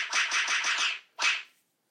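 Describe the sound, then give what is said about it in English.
A voice imitates the gruesome squelching sound of eyeball gouging: a wet, hissy burst with about six quick rhythmic pulses, a brief pause, then one shorter hiss. It's fairly loud and has no talking. “Yeah, that's as close as we're going to get to eyeball gouging sounds.”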